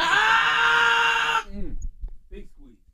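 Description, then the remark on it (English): A loud, shrill scream holds steady for over a second, then cuts off abruptly, followed by quieter muffled voices and small sounds. “Oh, my gosh, that was a horrible scream.”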